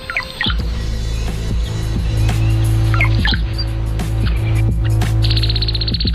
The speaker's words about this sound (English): Here's the male brown-headed cowbird singing to one of his sweethearts.